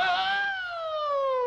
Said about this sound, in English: That's the air raid siren.